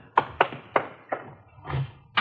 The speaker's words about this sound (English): and we'd flopped in the squad room when Chief Backstrand's door opened.